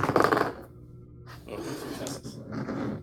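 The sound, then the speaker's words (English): Three dice rattle and clatter onto a hard surface in a loud burst, then tumble and skitter more quietly for a few seconds before settling, with no talking. “Go ahead. Make that roll. 3 dice.”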